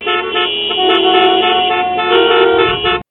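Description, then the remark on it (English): Car horns blare loudly and continuously for about three seconds in slow Los Angeles traffic, their overlapping tones forming a dense, steady honk that cuts off abruptly, with a faint rumble of traffic underneath. “I mean, that's what other cars sound like, because, like, it was really slow.”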